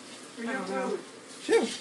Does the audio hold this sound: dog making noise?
yes